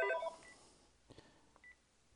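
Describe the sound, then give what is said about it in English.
A mobile phone rings with a short burst of electronic ringtone notes at the start, followed by a few faint beeps and soft taps. The sound is quiet, and nobody speaks. “And, sorry, my phone is ringing. It will stop in a second.”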